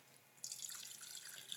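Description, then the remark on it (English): Water pours into a jar, filling it to the brim, after a brief quiet moment, a steady, soft splashing trickle that continues to the end with no voices. “Okay, let me have a jar. I'm gonna fill it up.”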